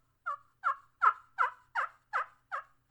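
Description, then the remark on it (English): A turkey call, played with the thumb along an arc cut into its side, sounds a steady run of eight soft, raspy hen yelps, evenly spaced, mimicking a contented hen with no talking over it. “You want to get to that little contented hen yelp. Maybe a little tree yelp where she doesn't really sound like, got no rasp in it, you know, not really awake, not really a call that's turning over all the way.”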